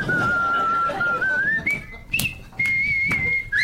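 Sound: whistling a tune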